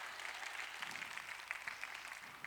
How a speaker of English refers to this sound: All right, so just clap so we can transition from that. Thank you.